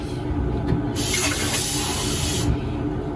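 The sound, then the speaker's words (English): Running tap water pours steadily into a glass for a couple of seconds, a continuous rushing hiss with a brighter splashing stretch in the middle, no voices present. The water is being poured for a child who asked for a drink. “I'll bring you that water.”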